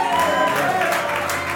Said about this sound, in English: God's people, come and clap your hands. Let me explain this. Clapping is not a Pentecostal thing.